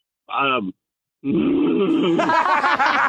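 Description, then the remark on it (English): A person imitates a weary, hungry cow: a short, low moo that sags in pitch, a brief pause, then a longer, rougher groaning moo that drags on to the end. “Number five, what sound would a cow who is hungry and tired make?”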